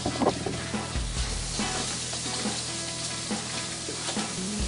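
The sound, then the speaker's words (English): Steady, crackling sizzle of beef meatballs frying in a hot pan without olive oil, with bright spattering pops over a low constant hum and a few soft clinks, no voices. “All right, let's put the meatballs in here.”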